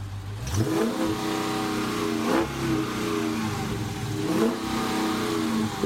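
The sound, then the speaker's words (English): A car engine revs up loudly, its pitch climbing in repeated surges, roughly three throaty pushes over several seconds with a steady rumble between them, as the speaker's son revs the family's newly acquired car. “This is my son, Casey, as soon as we landed the car.”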